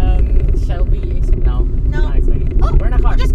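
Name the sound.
car interior rumble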